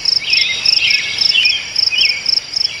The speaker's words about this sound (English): Those are robins, the brown-breasted worm eaters. Their melodies are all over the chart, like ….